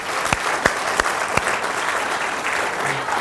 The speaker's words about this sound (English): We've been enjoying celebrating and singing together, and the band have just done a fabulous job in leading us as we've been singing and praising God together. Why don't we give them a real round of applause?